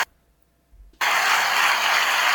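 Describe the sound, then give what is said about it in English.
After about a second of near silence, a burst of applause starts abruptly and holds steady as a loud, dense wash of many hands clapping, with no voices. “Alright, there's the applause I needed.”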